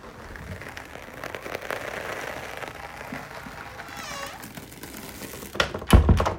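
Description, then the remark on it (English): An apartment door creaks shut with a wavering, high squeal over faint background noise, ending in a solid low thump as it closes. “And then when you close it, it creaks like this.”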